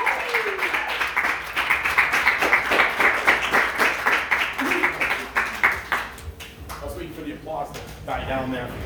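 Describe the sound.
Steady, dense crowd applause with many overlapping claps for about six seconds, then it thins out as a voice starts talking over the fading clapping.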